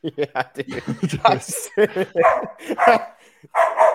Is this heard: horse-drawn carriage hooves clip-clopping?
no